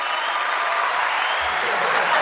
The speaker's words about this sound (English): I think the cheers. Holy soundboard. Yeah. I can only hear it from like a faint distance, but I hear it. Is this all happening? It's awesome. Because the applause sound effect is probably 9 seconds long